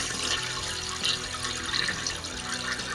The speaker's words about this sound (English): Didn't hear it? It did sound like it. That sounded like a toilet. It's a toilet flushing.